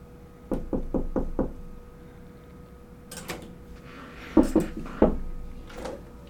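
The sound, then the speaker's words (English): Five quick, evenly spaced knocks rap on a door, followed by a few scattered thuds and clunks, with no one speaking. “Oh, I think somebody knocked on the door.”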